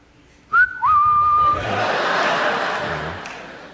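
An audience member gives a short, sharp whistle that rises and holds a steady pitch, followed by a broad wash of crowd noise with scattered laughter and reaction.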